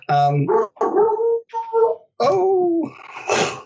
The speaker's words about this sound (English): How you doing, Dexter? Audience, welcome to Dexter. There's gotta Dexter. Love the dog. There's the Dexter.